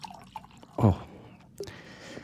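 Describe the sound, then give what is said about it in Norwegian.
Water is poured into a glass: a brief, loud gurgling splash followed by quieter trickling and faint drips. “Nå skal jeg skaffe meg, skal ta litt vann her, skal vi se.”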